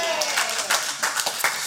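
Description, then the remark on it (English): A group of people clapping together, a dense, steady patter of overlapping hand claps at moderate loudness that carries on without a break through the short stretch, as the group gives themselves a clap after singing Waltzing Matilda. “Give yourselves a clap.”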